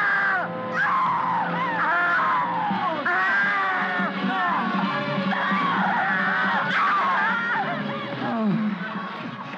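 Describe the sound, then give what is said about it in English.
A woman screams loudly and continuously for several seconds as she falls back down the wall to the floor, her shrill cries rising and wavering over a dense, busy layer of other sound, with no clear words spoken. “She sort of falls back screaming, and I think she dies from that.”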